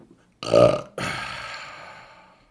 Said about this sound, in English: All right, get the belches out the way.